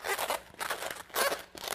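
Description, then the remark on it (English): An air-filled balloon is twisted to make something, in several quick rubbery squeaks and scrunches, about four bursts over a couple of seconds, with one higher squeal in the middle and no talking. “You might not be able to see what the air is doing, but the air is holding this balloon in place, and I can take it, I can twist it, I can make something out of it.”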